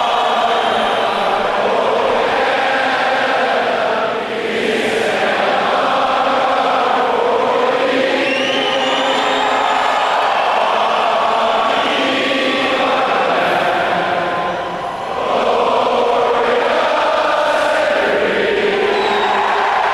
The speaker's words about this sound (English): This is the way this this anthem should be heard. No. Just the crowd at a hockey game. Air horn.